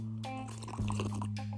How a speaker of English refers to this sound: Let me sip on some of this water.